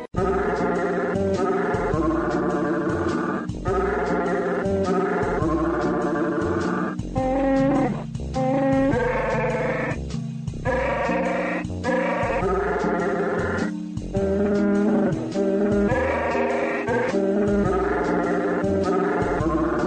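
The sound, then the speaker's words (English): A growling, bleating Chewbacca-like voice wails out the carol Silent Night in slow, long wavering phrases, loud and steady over a sustained musical backing for the whole stretch. “And in celebration of the holiday season, we would like to present that beautiful holiday favorite, Silent Night, sung by that wonderful soprano, Chewbacca.”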